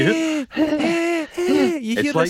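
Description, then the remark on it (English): A person imitates their own wheezing breath: three strained, drawn-out, squeaky intakes with brief pauses between them, loud. “But I can't do that because I wheeze. I go...”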